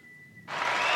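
After a half-second of near silence with a faint steady whine, a dense wash of hand clapping bursts in and keeps building in loudness to the end.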